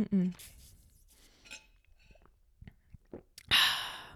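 sipping water

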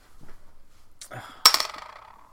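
glasses clinking

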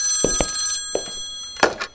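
telephone bell ringing

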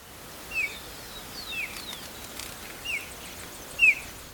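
white-tailed kite chirping call

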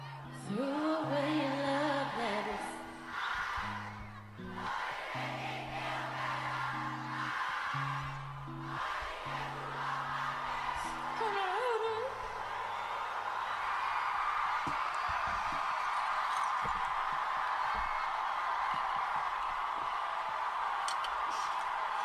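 concert crowd cheering

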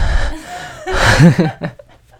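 sneeze

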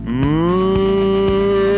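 cow mooing

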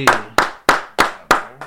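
round of applause

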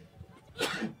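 sneeze

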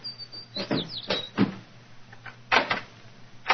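front door being opened

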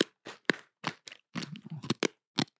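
crunching

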